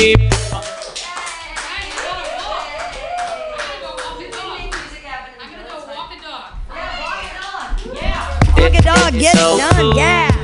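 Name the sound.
audience clapping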